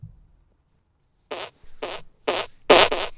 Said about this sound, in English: This is tiny fart.